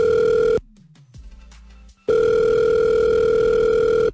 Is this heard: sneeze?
no